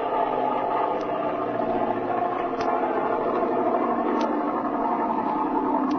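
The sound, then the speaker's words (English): A steady, droning airplane engine hums on without a break as the plane loses altitude and descends to land at an airport. It holds an even loudness throughout, with a few faint clicks scattered over the constant roar and no voices. “you might as well start losing some altitude”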